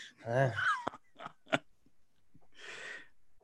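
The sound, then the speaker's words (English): A voice mimics exaggerated chewing as part of an impression of a character who is always chewing something: a drawn-out voiced hum, then a few sharp smacking, crunchy clicks and a breathy rush of air, with no actual words. “He's always chewing on, he's chewing on something like a, you know, soul jerky.”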